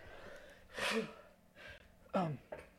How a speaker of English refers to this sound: I'm gonna sneeze again.